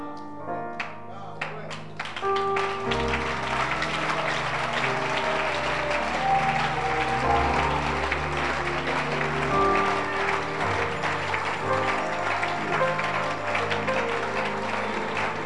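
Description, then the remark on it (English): A crowd breaks into loud, steady applause that keeps going for about fifteen seconds, a dense wash of many hands clapping, with sustained musical notes playing underneath. “Clap again.”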